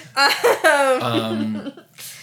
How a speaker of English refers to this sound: You're coughing throughout the entire episode and every other episode. I'm not coughing this episode.